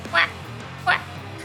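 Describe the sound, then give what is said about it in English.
Two short, bright quacking calls from a small line of ducklings following their mother duck as they waddle through snow in a little alleyway, spaced under a second apart, over a steady low background rumble. “It's a small line of ducklings following Mama Duck as they waddle here through the snow.”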